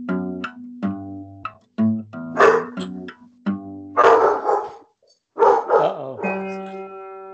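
Dogs bark loudly in a flurry of sharp, overlapping yips and woofs, with bursts of rougher barking in the middle and a drawn-out, whining yelp at the end.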